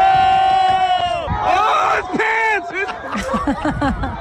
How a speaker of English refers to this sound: Here's a clip in which two would-be customers exited their cars and got into a fist fight during the wait. Oh, here it goes. It's going.